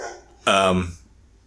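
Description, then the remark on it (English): A dog gives one short, sharp bark from somewhere outside, a single clear burst that cuts off quickly into quiet room tone. “The dog outside saying hello to me.”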